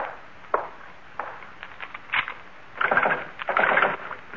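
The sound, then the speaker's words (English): A back door is shut and locked: a few sharp wooden knocks and clicks, followed by a longer rattle of the latch and bolt being worked. No one speaks. “Well, first the back door.”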